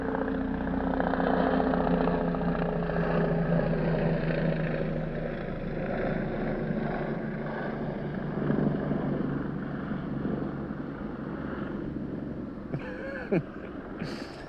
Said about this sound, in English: I don't know, just a guess that was a fascist bitch flying the helicopter.